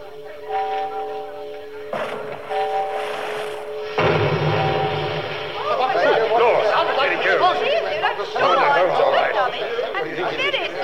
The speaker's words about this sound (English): Calm yourself, madam. It's just the signal to start the fireworks. Yes, there goes the first Roman candle.